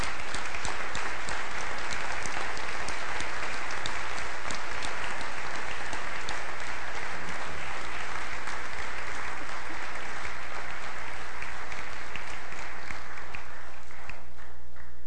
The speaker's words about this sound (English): Let's stand. Let's give a round of applause to Teen Challenge and to the Lord for what he's done.